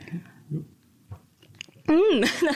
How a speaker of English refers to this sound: So, okay, I'm going to try my first ever 3D-printed raspberry.